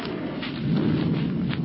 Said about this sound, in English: Hey, what was that flash of light? Lightning. Soon the thunder god speak. Oh, now don't tell me we're going to have a thunderstorm on top of everything else.